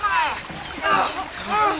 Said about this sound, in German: Los, zieht das Boot ans Ufer! Alle helfen mit! Gleich haben wir! Und nochmal!